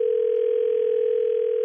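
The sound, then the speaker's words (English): A steady, continuous telephone dial tone hums at an even level for the whole moment before a three-way call is placed, clear with faint line hiss beneath it and no voices. “I want you to call from your phone. Uh-huh. And put us on three-way and say, hey, you need to talk to these people.”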